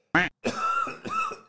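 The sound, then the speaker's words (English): A single sharp cough bursts out, followed by a strained, voiced rasp as the throat clears in two drawn-out pushes. “I'm trying to drink down a cough.”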